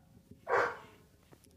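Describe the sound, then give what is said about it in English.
A single short dog bark rings out, fairly loud against a quiet, low background hum, then fades away with no talking around it. “I think I'll bring my dog.”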